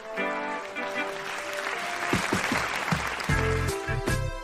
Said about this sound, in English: Now, please give a warm round of applause for your host,